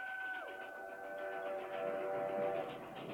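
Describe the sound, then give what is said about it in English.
A train draws near on the tracks, its horn sounding a steady multi-tone chord that bends lower partway through, over a continuous rolling rumble that grows slightly louder. “They decide to cross a bridge, and they, like, listen for the train, and then turns out the train is actually coming.”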